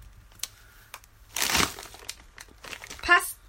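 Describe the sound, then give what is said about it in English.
A packet of Pastinos crunchy pasta snack crinkles open with a burst of crackly rustling, then a few sharper crinkles and a loud final crackle, heard among soft background voices. “This is the crunchy pasta snack.”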